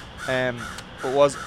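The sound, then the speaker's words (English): Two harsh, nasal caws from a crow, a short pause between them, loud against a quiet outdoor background. “Wow, that bird sounds cool.”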